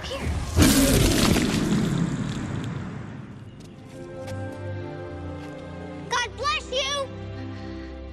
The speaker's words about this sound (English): the Brachiosaur makes that like a really loud noise, and everybody has to grab their ears before that. But what they used for the sound of the dinosaur sneezing was actually a whale blowhole and a fire hydrant at the same time.